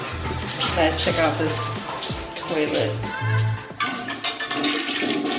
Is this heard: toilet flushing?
yes